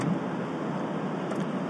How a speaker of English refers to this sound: we're on the highway and I'm seeing all these different cars, and now I'm starting to see them all in terms of different personality types.